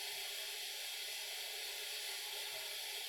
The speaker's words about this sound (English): Sorry, my fridge just took a leak.